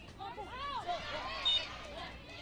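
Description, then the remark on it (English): A referee's single short, high-pitched whistle blast at a BYU versus Utah Valley soccer match, as the ball goes out of play, cuts briefly through the steady murmur of a crowd, with voices and commentary continuing underneath throughout. “And you heard the whistle.”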